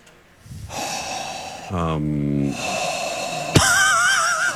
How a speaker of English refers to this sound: A lot of breathing. All right, let me try. A lot of heavy breathing.